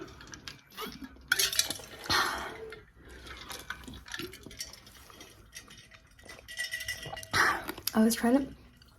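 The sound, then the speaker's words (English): Very cold water sloshes and gurgles inside a bottle in several uneven bursts, with liquid swishes, small clinks and faint dripping, and a few quiet vocal sounds between them. “I was trying to slosh it around and make like a sound with that, but it was so cold it was hurting my teeth because I have very sensitive little teeth.”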